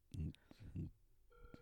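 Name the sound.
phone call ringing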